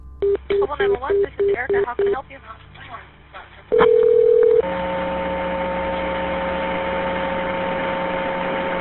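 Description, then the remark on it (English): A police phone call linked to the Imperial Memorial Gardens, a funeral home and cemetery, crackles to life: a quick series of dialing beeps, a brief pause, a loud tone, then a long stretch of steady buzzing static with a low electrical hum. “The police mainly heard static. Here is the call.”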